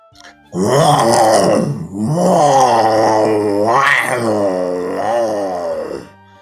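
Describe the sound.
A person does an impression of the Cocaine Bear: a loud, low, rough growling groan drawn out over about five seconds in roughly three swelling phrases, with no words spoken.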